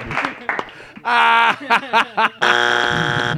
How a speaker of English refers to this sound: Sorry, our buzzer fucked up.